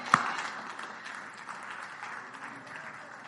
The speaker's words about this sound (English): Come on, clap your hands for that. Praise God.